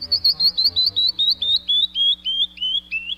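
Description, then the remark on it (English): A canyon wren sings a cascade of about fourteen clear, high whistled notes, each slightly lower than the last, in a quick steady rhythm that slows near the end, with no voices. “It's the canyon wren.”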